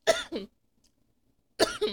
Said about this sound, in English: See, I'm so upset I'm starting to have a coughing fit.